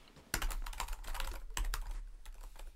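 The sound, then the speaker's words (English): Rapid clacking of computer keyboard keys, a burst of crisp typing with a few sharper strokes standing out, heard alone without any talking. “Is that you typing in something?”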